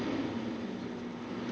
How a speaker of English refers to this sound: My apologies, people, if y'all hear that loud ass trash truck.